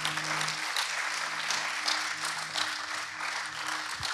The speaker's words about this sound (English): So please give a round of applause just for my amazing parents.